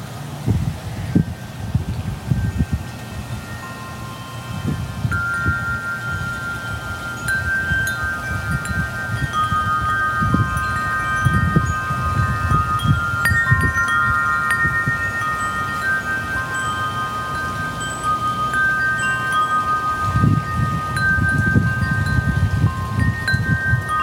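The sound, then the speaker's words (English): Wind chimes ring continuously with overlapping, sustained metallic tones over a steady wash of running water outdoors, near a pool at a home, with gusty low rumbles rising and falling throughout. No one speaks. “All of that is accompanied by the chimes and the soothing sound of the water running.”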